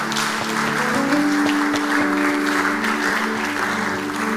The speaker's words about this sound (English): Give the Lord a clap offering somewhere.